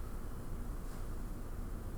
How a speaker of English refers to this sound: It's windy out, dude.